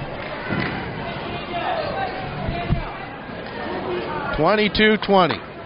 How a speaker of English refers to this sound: Big crowd on hand here tonight at the house that Frank built.